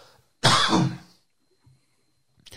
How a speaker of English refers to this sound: sorry, I had a cough.